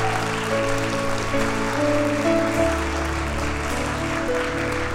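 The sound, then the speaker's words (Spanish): A church audience applauds the King of Kings in a steady, dense wash of clapping that lasts the whole stretch, with sustained keyboard chords holding underneath and no one speaking. “¿Alguien puede dar un aplauso al Rey de Reyes?”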